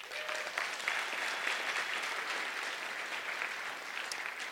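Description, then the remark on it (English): Steady applause from an audience fills the whole stretch, a dense wash of many hands clapping at a consistent moderate level without any talking over it. “Also, Marty Clayton, good round of applause for him.”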